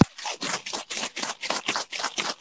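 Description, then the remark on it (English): Rapid, steady back-and-forth rubbing on paper, about ten dry, hissy scratching strokes in a quick even rhythm, with no voices. “That sounds like we're rubbing things on paper.”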